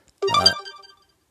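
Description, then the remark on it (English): A mobile phone ringtone chirps out in one brief, bright burst of layered electronic tones, then trails off into a fading ring, with no talking. “There goes my phone making all sorts of noise.”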